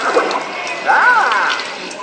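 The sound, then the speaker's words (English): A steady, loud hiss of water sprayed onto an audience by Fozzie Bear's new 3DX act, with splashing throughout, while a brief rising-and-falling vocal cry cuts in around the middle. “You tried to drown us.”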